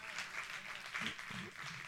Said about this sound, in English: Amen. Don't be afraid to clap.